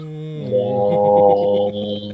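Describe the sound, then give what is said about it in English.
A voice imitates a deep foghorn with one long, steady, low droning tone lasting about two seconds. It swells a little in the middle, stays loud throughout, and has no words or other talk. “I love we all had our own foghorn noise ready to go.”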